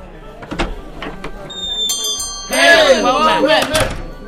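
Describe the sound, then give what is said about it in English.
A few wooden thunks and knocks as a tavern door swings open, a brief bright bell chime, then a sudden swell of lively tavern crowd chatter. “Mercenaries, wizards, rogues, warriors, and adventurers of every race, color, class, and culture come through the doors of the Rusty Dragon, all seeking fame and fortune.”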